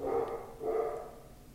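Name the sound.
dog barking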